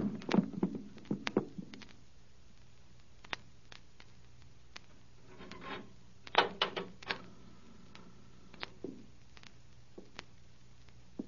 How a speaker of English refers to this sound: Hey, there ain't no lock to this here cupboard door. I'll drive something in there. Here, this knife. This'll do it. That'll hold up.